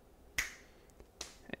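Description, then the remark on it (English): Several crisp finger snaps with no talking: a sharp one with a brief ringing tail, a pause, another snap, then a quick pair close together at the end. “Since it's an unedited podcast, snap, crackle, pop.”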